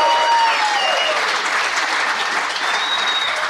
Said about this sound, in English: Full disclosure, I asked them to cheer that loud before we started recording.